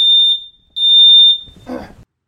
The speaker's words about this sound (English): So, is there a fire alarm going off? There's a fire alarm going off. I don't know why. I should probably go check. Hang on.